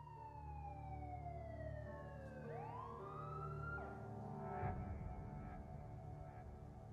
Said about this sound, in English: Still hear the ambulance? The siren, can you still hear it?